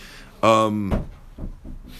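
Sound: door being closed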